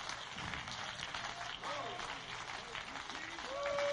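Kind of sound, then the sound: crowd, audience hand clapping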